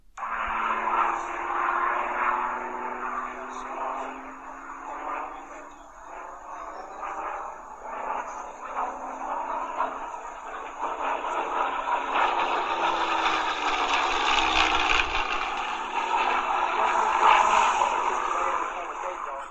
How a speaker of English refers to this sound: When we're talking about the Rolls-Royce Merlin engine, you will understand what I mean when I say how amazing this aircraft sounds.